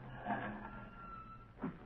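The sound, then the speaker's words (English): A car engine rumbles low and steady as the vehicle pulls up and comes to a stop at a lawyer's building, with a brief swell in the noise near the end. “I'm stopping here, Margot.”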